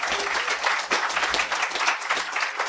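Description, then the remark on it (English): A crowd applauds steadily, many hands clapping in a dense, continuous wash of sound that stays loud and even throughout, with no voices on top; an audience at a conference aboard a cruise ship applauding Knut Anderson's talk on strategic metals. “And just before we even introduce Knut, how many of you had your mind expanded by show of applause by his talk?”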